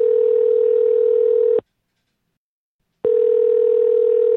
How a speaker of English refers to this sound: There's also a message from Linda asking Kevin to call Lee. So upon calling Lee, Kevin finds that there is no one answering the phone.